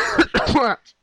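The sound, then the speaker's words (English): A loud bout of raspy coughing, two or three rough voiced bursts run together, then a faint short huff after a brief pause. “I've got that cough coming on a bit.”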